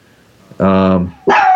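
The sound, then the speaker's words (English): A dog barks twice, loud and sharp: a longer, drawn-out bark followed after a brief pause by a second one that is cut off at the end. “Oh gosh, now my dog's going at it.”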